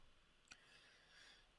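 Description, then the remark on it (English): Two sharp computer mouse clicks against a faint background hiss, a soft one first and a louder one about a second later, as a website link is clicked. No voices. “I'm clicking on it right now.”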